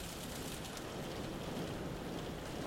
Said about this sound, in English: Huge shower smashing the window.